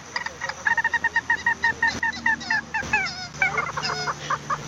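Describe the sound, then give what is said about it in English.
A recorded call of a secretive marsh bird, played during marsh bird monitoring at Indian Ridge Marsh: a rapid, rhythmic series of harsh, nasal calls, running continuously with a steady pulsing rhythm and some overlapping calls near the end. “That's why it's a secretive bird.”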